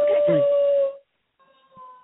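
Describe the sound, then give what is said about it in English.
A person imitates a werewolf howl: a loud, steady, high-pitched voiced tone lasting about a second, followed after a short pause by a fainter, thinner second tone. “Can you howl now?”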